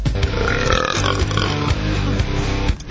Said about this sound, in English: That burp presented by Budweiser.